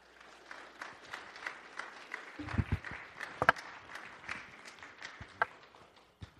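An audience claps steadily, a dense patter of many hands that holds at a moderate level throughout, with a few sharper thumps and knocks standing out near the middle and end.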